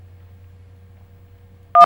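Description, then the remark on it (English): A low steady hum runs quietly for a moment, then a single short, loud keypad beep sounds at the very end as a button is pressed, a sharp dual-pitched telephone-style tone. “You always press the buttons and it makes a beep.”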